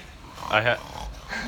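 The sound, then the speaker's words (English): A dog gives a quick pair of nasal snorts, one strong burst followed by a softer one, against a low background murmur. “Yeah, the little snorts that you're hearing are actually from the dogs that are here.”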